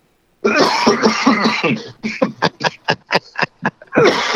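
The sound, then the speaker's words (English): A loud coughing fit: a couple of long, harsh coughs followed by a rapid series of about eight short, sharp coughs, then one more rough cough at the end. “So that mic didn't come with a cough button.”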